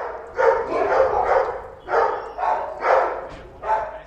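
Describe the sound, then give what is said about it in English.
Several dogs at a dog and cat home bark repeatedly in overlapping bursts, a busy chorus of loud, mid-pitched woofs with barely a pause between them. “Whenever you pass by the dog and cat home on foot or maybe by bike, the dogs in particular make sure you're aware of their presence.”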